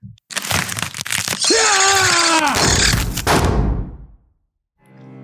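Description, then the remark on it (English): A loud burst of gunshots: several sharp cracks in quick succession, then a sustained roar with a rising metallic whine that fades into a low rumble. A brief stretch of silence follows before a faint voice begins. “Well, there's our second set of gunshots, so let's dive into these BOWs.”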